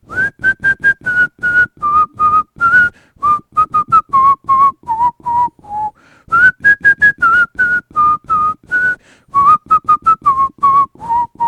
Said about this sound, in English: Somebody else want to whistle?